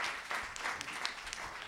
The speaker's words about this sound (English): First off, could you all like give a round of applause for yourselves for like coming here tonight? Seriously, come on.